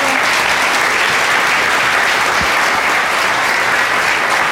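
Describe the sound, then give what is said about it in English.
An audience at an evening panel event claps steadily for the panelists, a dense, loud wash of many hands clapping at once, sustained without a break for several seconds. “Well, I think that's going to be our last question for tonight, but please, let's give another huge round of applause to our panelists.”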